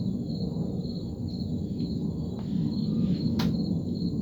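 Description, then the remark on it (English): A large airplane flies overhead, a loud, steady low rumble that fills the whole clip without fading, while a high, thin chirping of insects runs faintly above it. No one speaks. “It's a big ass plane going over top.”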